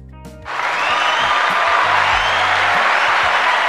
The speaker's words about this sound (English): Turn that off. You don't get too much applause over here.